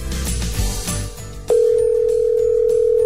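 Brief background music gives way to a loud, steady telephone ringing tone, a single unbroken electronic hum from an outgoing call that holds to the end.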